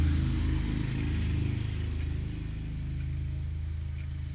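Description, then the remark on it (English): A motorcycle engine rumbles with a deep, steady drone, its pitch shifting slightly as it passes, loud throughout with no voices present. “Just waiting for that motorcycle to pass.”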